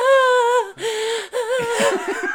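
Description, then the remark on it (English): A voice imitates someone being choked: strained, high-pitched gasping and croaking in three short bursts, fairly loud, with breathy rasps between them and no words spoken. “Yeah, because the whole time that they're being choked, this is what they sound like.”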